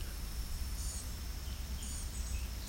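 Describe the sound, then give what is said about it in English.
A common yellowthroat sings faintly in a swamp, two short bursts of repeated high, chirpy phrases over a steady low outdoor rumble. “Common yellowthroat here.”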